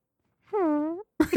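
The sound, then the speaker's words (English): A voice makes a half-second droning, buzzy tone, then a short, rough sputtering burst, a mouth imitating a fart noise, with no other sounds around it. “Yeah, I like mouth fart noises.”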